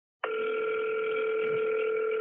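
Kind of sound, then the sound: signal or alarm, phone call ringing through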